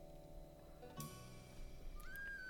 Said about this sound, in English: What's that? What's that whistling? It's a tin whistle right there. That's a tin whistle. Yeah, it's my bass player.